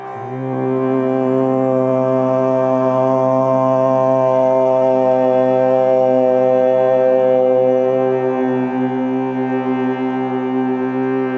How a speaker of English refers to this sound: Now the chanting of the mantra Om begins and ends with the hum. So hum for a moment, then opening your mouth to the A, U, and then the M is a return to the humming.